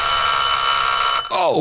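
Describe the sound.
A loud, shrill timer ding when the timer reaches one minute, ringing steadily for about a second with a bright, metallic tone, then cutting off as a voice starts speaking.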